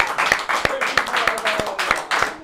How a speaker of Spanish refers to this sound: Ahora sí, aplauso, puñeta.